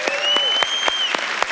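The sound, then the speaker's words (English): An audience at Fellowship Church applauds for the church's different locations with steady, dense clapping and a few sharper individual claps standing out. A high, sustained whistle rings over the applause for about a second. “So let's give a big round of applause for all of our different locations.”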